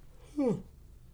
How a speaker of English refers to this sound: Excuse me. Sorry. Jeez, I'm yawning like crazy. I'm going to take a nap.